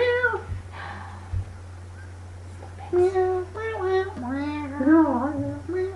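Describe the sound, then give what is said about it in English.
Several cat meows strung together into a bouncy, tuneful novelty jingle, pitched up and down like a melody over a steady low hum, fairly loud, with no talking. “….”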